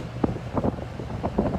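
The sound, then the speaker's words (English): Steady wind blowing outdoors over a city, buffeting the microphone with low rumbling gusts and a few brief bursts, constant and fairly loud throughout with no speech. “It's a little on the windy side right now.”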